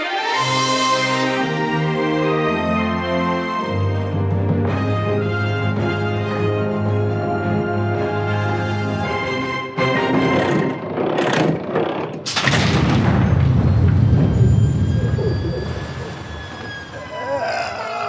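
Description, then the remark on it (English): A heavy vault door creaks open with a long, strained, siren-like groan that drops in pitch partway through, then gives way to a loud burst of rough grinding and scraping. “That door is so heavy.”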